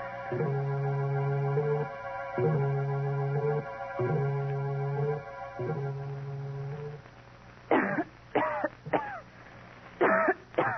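A woman coughs in a rapid fit of four or five harsh, close bursts near the end, after a steady repeating low tonal pattern hums on its own for several seconds.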